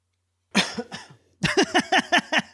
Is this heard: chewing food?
no